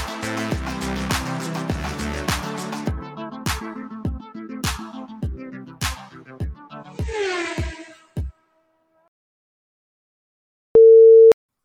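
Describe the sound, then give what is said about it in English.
A short, loud, steady car horn blast from someone just parked outside a house sounds once after an upbeat musical outro ends and a few seconds of silence pass. The honk is a flat, mid-pitched tone lasting under a second. “What is literally someone just parked outside my house honking their horn, apparently.”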